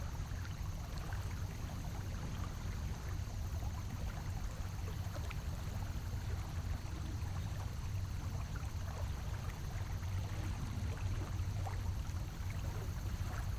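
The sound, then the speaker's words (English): Steady, continuous rush of flowing water with a deep low rumble beneath, unbroken and even throughout, fairly loud, with no voices. “What does this water see now? Will it recognize you?”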